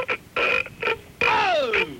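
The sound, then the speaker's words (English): A series of croaky burps, several short ones and a long gurgling belch whose pitch slides downward, with no talking around them. “You know, where everybody's burping on there?”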